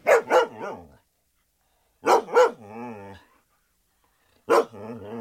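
A dog barks loudly in three short bursts, mostly pairs of sharp barks separated by pauses, with some barks trailing into a drawn-out whine or growl.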